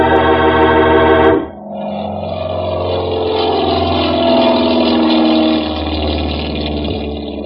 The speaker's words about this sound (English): We went out onto the field and climbed into the plane. Then Ayers gunned the motor, and we were taking off.